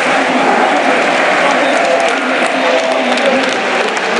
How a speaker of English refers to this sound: And that's the full time whistle. The Rangers fans cheer. They hung on! Hung on! With 11 men against 9.